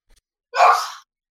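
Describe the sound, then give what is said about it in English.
A single sharp sneeze, fairly loud, bursting out abruptly and trailing off within half a second, with silence on either side. “Bless you. Ooh, Gesundheit.”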